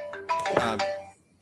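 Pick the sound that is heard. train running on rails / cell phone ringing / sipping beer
cell phone ringing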